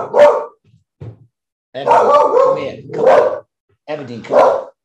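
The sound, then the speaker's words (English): A dog barks and yowls in several loud, drawn-out bursts separated by short pauses, the vocalizations harmonic and almost voice-like. “Is this dog barking too?”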